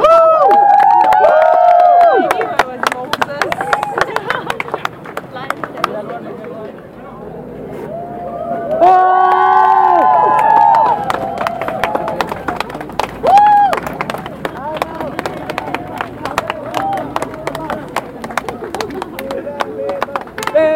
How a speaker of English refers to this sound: Okay, so that was the sound of cheering. As the first three people who were arrested from the Malaysian Insider.